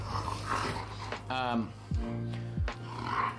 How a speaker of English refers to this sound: Guys, I guess my dog wants to take over my podcast now.